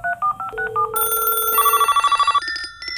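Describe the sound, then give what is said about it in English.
A quick run of electronic dialing beeps leads into a telephone ringing in rapid, warbling pulses, loud, with no voices. “Time to hit the phones.”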